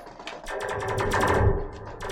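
A harsh screeching hiss of a fired blast that makes an immediate left turn, lasting about two seconds, with a steady droning tone underneath and rapid crackling, rattling bursts running through it; fairly loud, with no one talking.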